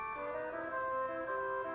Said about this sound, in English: But they all have these horns on them. They all come with these freaking, these musical air horns. And they are air horns.